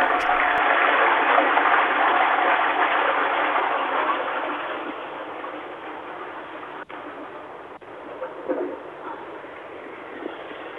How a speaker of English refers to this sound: If you could go and flush that.